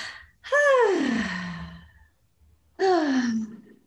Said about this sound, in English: So let's just picture yourself looking into your third eye, looking at the ocean, and taking a couple of breaths, inhale and exhale.